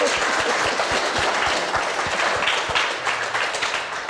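People applauding steadily to welcome a visiting artist and photographer to a lunchtime talk, many hands clapping in a dense, continuous wash of sound that stays loud and even throughout with no voices on top.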